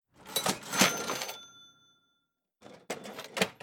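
A cash register cha-ching: a loud mechanical clatter and a bright bell ring that fades out, followed after a short pause by a few more rattling clunks of the drawer.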